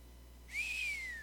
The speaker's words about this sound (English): Give me a whistle. I can't whistle very good.